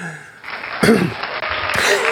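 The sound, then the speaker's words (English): An audience claps in a steady, dense patter that swells louder partway through and stays fairly loud to the end, with a brief vocal sound mixed in. “Thank you for those claps.”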